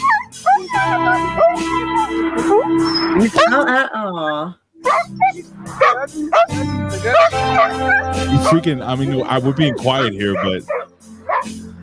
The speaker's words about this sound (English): this dog went absolutely crazy.